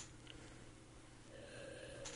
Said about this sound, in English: Yeah, it's been a lot of Band-Aid, actually. Now, the more that I sniff, the more I smell of it.